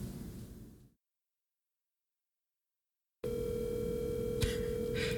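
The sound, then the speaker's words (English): A telephone dial tone starts abruptly after a stretch of silence and holds steady as a loud, continuous hum, with a couple of brief clicks partway through and no one speaking. “Welcome to the dial tone episode.”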